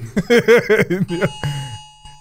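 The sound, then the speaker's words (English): A phone's Amber Alert emergency alert tone blares in a rapid series of about six harsh, buzzy, warbling pulses, then holds one steady tone that fades out, with no voices over it. “Yo, not the Amber Alert.”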